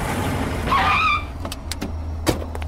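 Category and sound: vehicle, squad car driving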